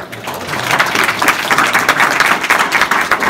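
A crowd claps steadily, a dense, even round of applause that swells in the first half-second and holds loud and sustained throughout, with no voices rising above it.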